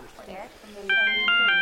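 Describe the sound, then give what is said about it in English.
A plain, standard electronic phone ringtone starts partway through, a steady bright tone pulsing in quick repeated bursts, fairly loud, with a person talking before and beneath it. “Well, that's downright boring, but not so offensive in my mind.”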